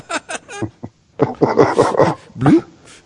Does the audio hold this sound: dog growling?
yes